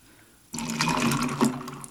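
Diet cranberry juice pours steadily into a mushroom-shaped glass for a cocktail with triple sec, after a brief quiet moment: a continuous splashing, gurgling stream of liquid with a slight rise in pitch as it fills, heard alone without talking.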